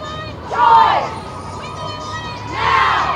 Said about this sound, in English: There was a moment of just a second of stunned silence, and then it was a rejoicing and tears, and the shout was, Roe's overturned.